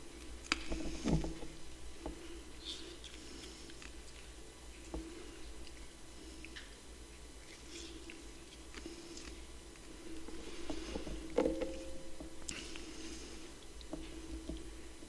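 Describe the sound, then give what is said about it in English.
Quiet chewing of communion bread during a communion service: soft irregular crunches and moist squishy mouth sounds scattered over about fifteen seconds, with no one talking. “Let's all partake of the body.”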